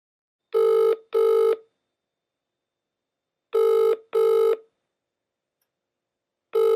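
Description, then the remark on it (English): A telephone call from India rings on the line in paired double bursts, repeating roughly every three seconds. The tones are clear and steady, with no voices and silence between each pair. “Take a listen to this desperate phone call from India.”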